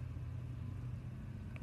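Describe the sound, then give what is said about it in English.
An ice cream truck's engine rumbles by with a steady, low motor drone, constant, with a brief brighter tone creeping in at the very end. “The ice cream truck, here he comes.”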